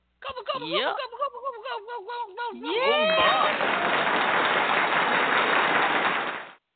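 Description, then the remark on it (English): A wavering, warbling voice gives way to a burst of steady applause on the Food Fascinations show after wishing everyone a happy Thanksgiving, a dense hiss of clapping that holds for about three and a half seconds before cutting off. “Who was the applause for”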